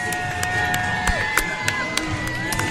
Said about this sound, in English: we have to give them a round of applause. Yes, thank you to the Brooklyn Churches United for Israel.